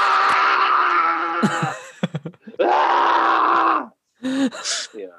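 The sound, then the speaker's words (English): An animated character screams with intense strain: a long, loud yell, a burst of short grunts, another sustained scream, then a pause and ragged, gasping cries. “A lot of inane screaming for episodes on end.”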